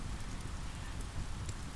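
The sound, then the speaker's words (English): Steady rain from a storm at dusk by a lake patters on a surface, a dense, even hiss of countless drops with occasional louder ticks, continuous throughout. “The rain provides a steady percussion that becomes part of my song.”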